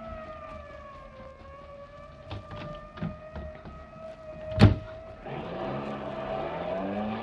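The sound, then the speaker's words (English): A siren wails on a steady pitch, broken by a sharp bang, then the fire chief's car engine surges in loud, roaring as the car speeds off in a chase after another car. “We'll take the fire chief's car. The fast one.”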